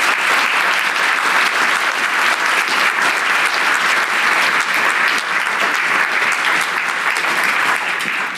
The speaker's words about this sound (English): That's fantastic. Can you all give this lovely panel a round of applause? Thank you.